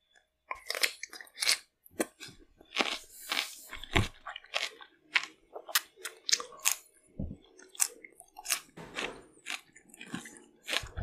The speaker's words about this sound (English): I'm going to quickly finish my cucumber.